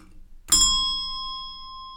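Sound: meditation chime ringing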